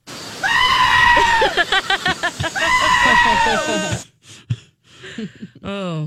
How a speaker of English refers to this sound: Okay, let's get goats in here. So here's a goat.